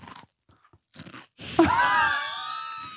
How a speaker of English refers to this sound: Listen, this is how it is. People love that. Really? Listening to people chew. Why? I don't know.